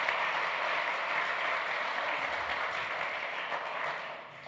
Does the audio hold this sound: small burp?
no